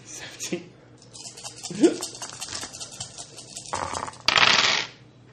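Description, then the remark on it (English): Dice clatter and tumble across a tabletop in a few rattling bursts, ending in a louder skittering roll, with brief voices murmuring in the background. “I have dice.”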